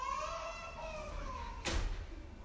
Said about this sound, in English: I love kids crying. I actually do. You know what the Bible says? It says from the lips of infants, God ordained praise. And part of what it does is when we hear kids crying, it reminds us that they are created and that there's a creator.